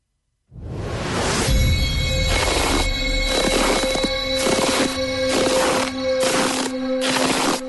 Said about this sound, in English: Here is your last set of footsteps in the snow for Foot Solutions. Count them up and then tell me how many in total we played.